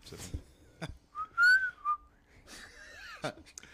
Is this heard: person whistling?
yes